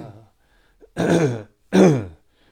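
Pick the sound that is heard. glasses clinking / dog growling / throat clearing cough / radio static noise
throat clearing cough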